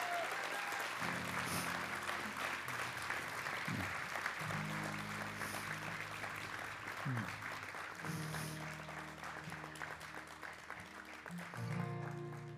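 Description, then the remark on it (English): A large crowd claps steadily and enthusiastically for several seconds for a senior pastor, a dense wash of hand claps, with a low voice murmuring underneath at moments. “So if you agree with that, would you just give your senior pastor a love clap? Just shower him.”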